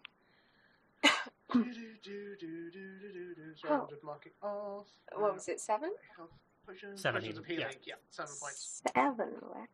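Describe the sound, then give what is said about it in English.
A voice acts out a short, sharp cough followed by sputtering, throaty splutters and throat-clearing noises, fairly loud, with a few more spluttery bursts near the end. “you come to consciousness with a slight sort of cough and a splutter as you feel the healing potion making its way down your throat.”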